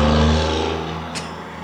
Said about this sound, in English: That's a truck.